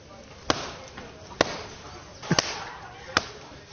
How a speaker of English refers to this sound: It's going to get noisy. I have quite a powerful kneading method, which is called the French slap.